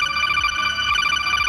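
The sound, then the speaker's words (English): A phone ringtone plays loud, a bright electronic warble of stacked high tones that rings continuously for the whole moment with no voices over it. “Solid Snake is that guy that doesn't sit in his assigned seat and then answers his phone during the movie.”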